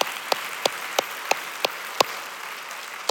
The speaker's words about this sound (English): why don't we all clap? That was a good moment to clap.